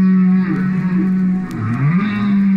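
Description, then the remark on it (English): A recording of humpback whale song, played by biologist Roger Payne in a wood-paneled living room at his home in Vermont: a steady low moaning tone with slow pitch swoops and bends, sliding down and back up, sustained and fairly loud with a faint hiss above it. “He's at home in landlocked Vermont, listening to the songs of his beloved humpback whales in a wood-paneled living room.”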